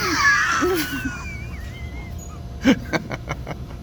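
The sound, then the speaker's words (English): A fart in the water comes through as a brief bubbly pop followed by a few quick, quieter sputters, after some thin, squeaky whining tones at the start. “I just farted in the water.”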